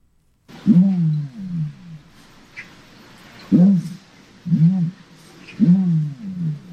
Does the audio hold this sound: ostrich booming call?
yes